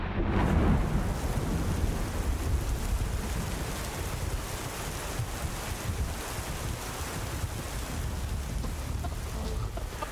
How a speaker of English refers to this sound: It is a raining afternoon at Tampa Stadium. The Buccaneers kicking off.